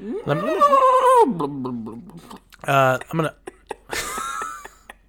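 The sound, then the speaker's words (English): A voice mimics a drowning horse: a wavering, bleat-like whinny followed by sputtering, gurgly bursts, three loud outbursts separated by brief pauses. “It's a horse drowning.”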